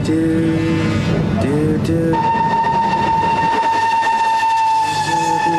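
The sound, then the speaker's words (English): Steady rumble of a moving train heard from inside a train compartment, with a sustained high tonal whine layered over the low clatter, loud and continuous throughout with no one talking. “he realizes that he is sharing a compartment with a penguin, of course, reading a newspaper, as you do in a train.”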